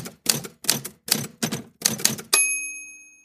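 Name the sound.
typewriter typing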